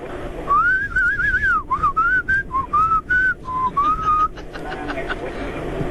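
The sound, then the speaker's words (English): A professional whistler whistles a food order as a string of short, speech-like phrases, the pitch wavering up and down as if imitating spoken words, clear over a low background hum. “So, I'd like to place my order today, but I'd like to whistle it to you, okay?”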